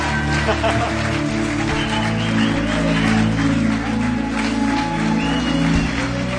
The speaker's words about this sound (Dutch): Zie je, laten we gaan staan. Laten we een geweldig applaus geven. Let's stand. Let's give him a great hand.